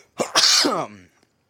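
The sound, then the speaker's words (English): A single loud sneeze: a quick catch of breath, then a forceful hissing burst that trails off into a falling voiced tail, with silence after. “I'm going to sneeze real quick.”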